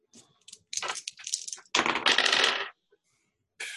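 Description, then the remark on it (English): Dice rattle and clack, rolled for a listen check in a tabletop role-playing game: a few quick hard clicks, then a sustained rolling clatter for about a second that stops abruptly, and one last brief click at the end. No voices. “And there's a very actually, give me a listen roll.”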